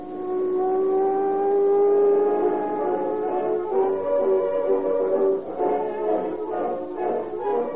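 A car engine drones steadily on a dark road leading to a northern California city. Its loud hum climbs in pitch as it accelerates and then rumbles on unevenly, with no voices present.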